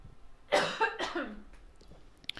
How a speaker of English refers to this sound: So, sorry, let me just clear my throat. I keep clearing my throat.